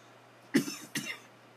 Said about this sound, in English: Got that winter cough. I can feel it. It is coming on.